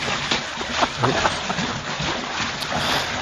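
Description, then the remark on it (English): A pet reindeer jumps into a bath: water splashing and sloshing, a busy run of wet slaps and splatters with irregular bursts, fairly loud throughout the few seconds. “That was a lot of what splishing and splashing.”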